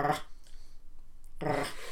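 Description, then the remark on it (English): A dog growls in two rough bursts: a short snarl at the start, a pause of about a second, then a longer, louder growl to the end. No one speaks. “I'm not gonna try and make that sound. You can't but, growl.”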